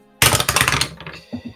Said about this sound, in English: I'll roll an investigation. I'm going to roll my actual dice for a change.